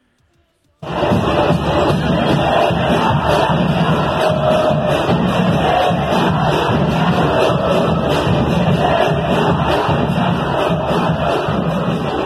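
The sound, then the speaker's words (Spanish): A dense, roaring crowd of América de Cali football fans celebrating outside the stadium on 10 August as a tribute after the death of coach Gabriel Ochoa, with continuous shouting, chanting and cheering that starts abruptly and stays loud and steady throughout, punctuated by occasional bangs. “Esto que suena de fondo es los hinchas del América de Cali haciendo una fiesta el día 10 de agosto.”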